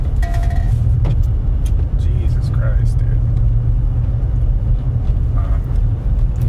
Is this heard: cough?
no